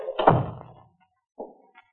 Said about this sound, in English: Close that door so we can have some quiet. All right.